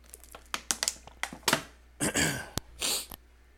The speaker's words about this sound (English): The water I'm drinking is Crystal Geyser Alpine Spring Water.